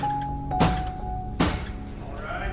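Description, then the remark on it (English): A bailiff bangs a brick twice on a wooden desk in a courtroom to bring the court to order: two heavy, hollow thunks about a second apart, fairly loud over a steady background hum and faint murmur. “Oh, but wait, are we going to start with a bailiff picking up a brick and banging it on the desk to bring the court to order?”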